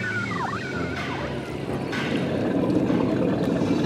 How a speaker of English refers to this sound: Thank you, sir. I appreciate the boat ride.